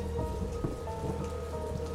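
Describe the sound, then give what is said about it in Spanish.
Steady, dense rainfall hisses throughout over a city, with a deep rolling rumble of thunder sitting low beneath it. No voices, just the continuous wash of a storm. “Lucio y el subinspector Castillo vuelven a atravesar la ciudad bajo la lluvia.”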